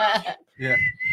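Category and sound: human body sound, human whistling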